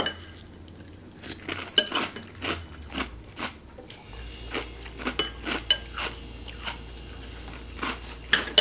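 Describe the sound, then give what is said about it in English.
A spoon clinks against a bowl amid crunchy chewing of Honey Nut Cheerios, a series of sharp, irregular clicks and crunches with a low hum underneath. No one speaks. “I mean, they have a lot of crunch to them.”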